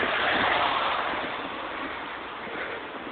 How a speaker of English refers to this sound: Oh, it is raining a little bit. It's a good thing I brought my umbrella.